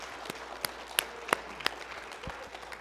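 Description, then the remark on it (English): An audience gives the Lord a hand clap, producing a soft, steady patter of scattered handclaps with a few sharper individual claps standing out over a quiet background. No one speaks. “Come on, would you give the Lord another hand clap today, please?”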